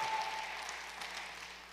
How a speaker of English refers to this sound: And everyone shouted, come on, make some noise like you're thankful this morning for God's goodness.